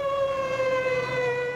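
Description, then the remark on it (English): A fire engine siren wails in one long, steady, slightly falling tone, loud, as the fire brigade arrives at a theatre on Market Street amid crowds, policemen and St John's ambulance men, with a faint rumble of traffic underneath and no voices. “And to add to all the excitement, the fire brigade arrived.”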